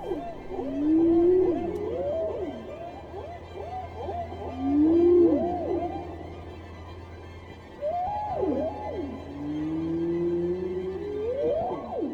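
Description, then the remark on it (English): Humpback whale song, featured between the symphonic motifs of an orchestral work, fills the stretch: rising and falling moans and swooping tonal calls in several phrases, fairly loud, with a faint low sustained hum running beneath. “Hovhaness treats the whales like vocalists, featuring them in between the symphonic motifs”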